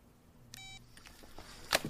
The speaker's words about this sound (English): Just hangs the phone up.